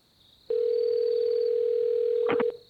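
A single steady ringback tone on a telephone line, loud and clear, holding for about two seconds before cutting off, with a few brief clicks near its end; a call to a police department placed from a quiet town street at night.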